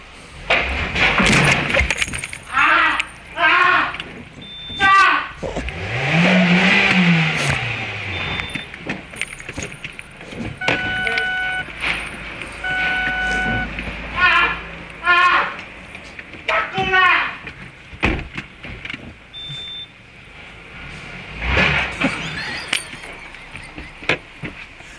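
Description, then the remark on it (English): An engine revs and a car crashes with a burst of breaking, glassy clatter, while excited voices talk and shout throughout. “He's like, is my car all right?”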